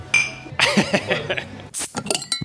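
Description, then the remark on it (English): Glasses clink together in a toast, a few bright ringing taps with short metallic tails, mixed with soft murmuring voices and light tabletop clatter. “Cheers to that.”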